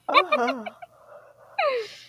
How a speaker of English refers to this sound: Stop yawning. You're supposed to be scared awake.